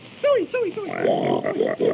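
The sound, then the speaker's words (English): A person imitates Mickey's singing pig, starting with three quick squealing oinks that slide downward, then breaking into a rough run of snorting grunts. “Wait till you hear my singing pig.”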